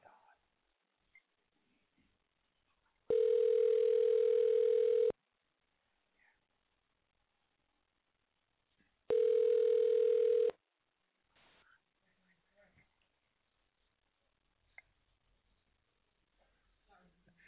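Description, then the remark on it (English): A telephone ringback tone purrs twice, each burst about two seconds long with a long silent gap between, heard through a thin phone line. Nobody picks up; only faint rustles fill the pauses. “She's not answering the phone.”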